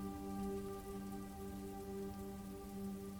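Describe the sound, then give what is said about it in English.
Light rain patters steadily onto a surface as a storm dies down and eases to a drizzle, a soft continuous drizzle with no voices, calm, with a faint low hum underneath. “The rain is easing up, and it's only now drizzling.”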